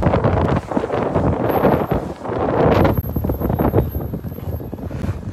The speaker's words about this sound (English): It's a bitterly cold wind chill. Why do we live where the wind hurts my face?